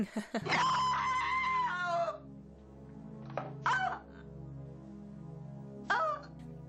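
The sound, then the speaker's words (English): A woman's Sarah Palmer scream: one long, shrill scream, then two shorter, sharp cries a few seconds apart, all over a low, steady droning background. “Let's get a little of a Sarah Palmer scream in there for Bernie.”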